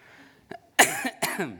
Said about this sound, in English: And you'll have to excuse me this morning, I've got a minor chest infection. So if I collapse onto the ground in a fit of coughing, just give me a moment and I'll get back to you.